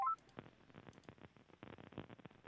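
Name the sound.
telephone number being dialed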